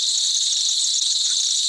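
A loud, steady cicada buzz drones without pause, a shrill, high-pitched whine that holds constant from start to finish with no voices.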